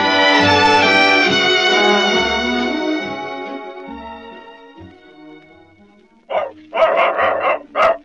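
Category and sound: animal, dogs barking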